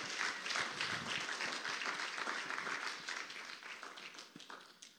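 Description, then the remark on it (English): A crowd claps in a dense, steady round of applause that holds for several seconds, then thins and tapers off toward the end. No one speaks. “Somebody give him a round of applause.”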